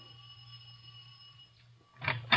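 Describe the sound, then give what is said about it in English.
A house doorbell rings late at night, past 11 o'clock, with a steady, humming buzz that holds for a couple of seconds, then ends in two louder, harsher bursts. No one speaks. “I walked up the steps and rang the doorbell.”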